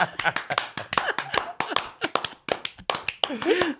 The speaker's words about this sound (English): Slow clap. Slow clap.